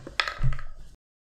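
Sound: dice being rolled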